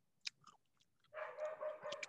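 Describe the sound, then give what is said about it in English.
Crisp crunching of M&M's hard candy being chewed: a few sharp bites at first, then a steady stretch of loud, continuous crunching. No one speaks. “M&M's. That ASMR.”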